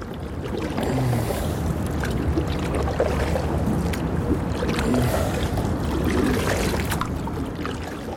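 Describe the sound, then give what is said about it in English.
A canoe is paddled eastwards along a canal from the M50 towards the Liffey, gliding along calm water, paddle strokes splashing and dripping in a steady rhythm, with a soft outdoor wash of wind in the background and no talking. “The boat went from the M50 westwards towards the Shannon, while the canoe, which I was paddling, went eastwards from the M50 to the Liffey.”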